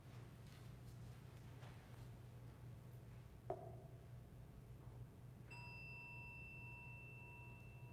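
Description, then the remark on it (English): A soft knock, then a meditation chime is struck once and rings out with a clear, sustained shimmering tone that hangs over a low, steady hum. No one speaks. “As we listen to this chime, let us remember our connection to each other and the world around us.”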